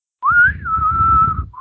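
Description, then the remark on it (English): A person whistles a lonesome ghost-town western-style melody: a quick rising phrase sliding into one long sustained note, with a breathy rumble underneath and no talking. “I'm a little dry today, so I didn't get to whistle as quite.”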